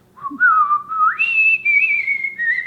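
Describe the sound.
A person whistles a slow Christmas melody alone, fairly loud, gliding from a low held note up to higher sustained notes in a smooth, unbroken line.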